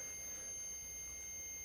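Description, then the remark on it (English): A device's electronic alarm signals a temperature change, sounding as a steady, high-pitched beeping tone, fairly quiet and unbroken for the whole moment, with no one talking over it. “So that's just letting me know that there's a temperature change.”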